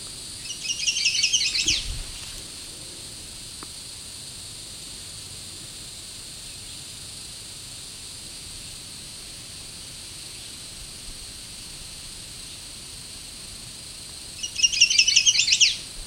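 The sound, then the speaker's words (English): A bird perched about two-thirds up a black spruce calls loudly in two bursts of rapid, high-pitched chirping, one at the start and one at the end, separated by a long stretch of steady background hiss. “I think a bird that loud would be very obvious.”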